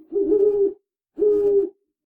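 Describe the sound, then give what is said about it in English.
Two drawn-out owl hoots, fairly loud, each lasting over half a second with a short silent gap between them. No one speaks. “Oh, that sounds like a handbag owl.”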